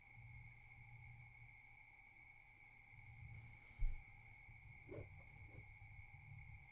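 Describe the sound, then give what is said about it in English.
A steady, continuous chorus of crickets trills without pause over a low background rumble, with a brief soft thump and a couple of faint knocks partway through. “The crickets are singing.”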